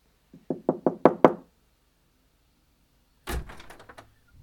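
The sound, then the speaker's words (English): Five quick, firm knocks on a front door by trick-or-treaters on Halloween, in a steady accelerating rhythm, followed after a pause by a louder clattering burst, like the door rattling or opening, then quiet. “I mean, we might as well knock, right?”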